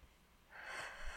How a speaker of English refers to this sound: Her breathing is back to normal.